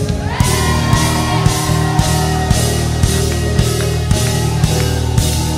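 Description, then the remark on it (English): An audience screams and shouts to the Lord together in a loud, sustained roar, layered over driving music with a steady, pounding beat that continues throughout. “Somebody scream in this house.”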